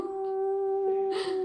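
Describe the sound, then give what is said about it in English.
A dog whimpers in one long, steady, high-pitched whine that holds for about a second and a half, with a brief rustling breathy burst near the end. “when Murphy was, I think, 8 years old, he was actually my in-law's dog”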